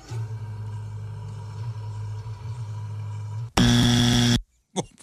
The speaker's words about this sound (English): How did that sound like it was recorded 15 miles away? What? Car in a garage? It's a death metal band.